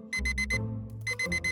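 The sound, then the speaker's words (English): An alarm clock beeps in two quick bursts of four shrill electronic tones with a short pause between them, loud over a low background rumble; it is going off for the fourth time while the man in bed does not move. “Adam's alarm beeps for the 4th time, but he doesn't move”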